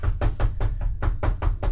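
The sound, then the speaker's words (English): Rapid, insistent knocking on a soundproof door: about eight heavy, evenly spaced thuds in under two seconds, loud and booming with no voices over them. “Andy, go get the door.”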